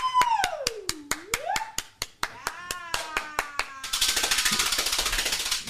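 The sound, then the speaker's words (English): Steady, evenly spaced claps ring out beneath a long sliding whoop that dips low and climbs back up, then the sound swells into a dense, loud burst of crowd applause. “Round of applause for a sold out meet and greet.”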